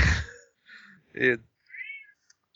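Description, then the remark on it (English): An angry cat following people lets out a few short, strained meows, spaced a moment apart after a brief rough rustle at the start. “That cat is angry. We're being followed by a cat.”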